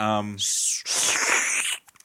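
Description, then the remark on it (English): A person makes a mouth sound effect imitating someone sipping water: a short voiced tone followed by a long airy, hissing slurp lasting over a second, fairly loud. “That's nice sipping water sound effect.”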